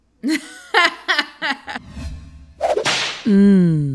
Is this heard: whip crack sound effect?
yes